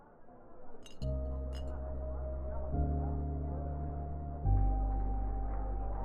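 A couple of sharp glass clinks ring out over a low murmur of chatter in the Glitterbug, a seedy little bar, then steady, loud chord-like music swells in and shifts twice underneath.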